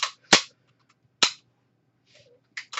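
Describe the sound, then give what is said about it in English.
An unloaded gun clicks dryly, four or five sharp, bright snaps at irregular intervals, with a faint rattle between them and no voices. “There's no bullets, bitch. I know, but, like, it's clicking.”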